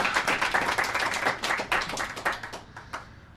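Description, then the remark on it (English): A small group at the Fibonacci brewery in Ohio claps for a few seconds, welcoming the brewery's owners onto the show: a dense, uneven patter of crisp hand claps that holds steady, then thins out and fades toward the end. “Yes, you can certainly applaud.”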